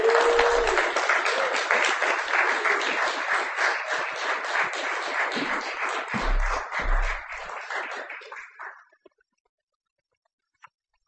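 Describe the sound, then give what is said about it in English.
An audience applauds a poet coming to the stage, steady dense overlapping clapping at moderate volume for several seconds that tapers off and fades to silence, followed by a single faint click. “Please clap the poet Lance to the stage.”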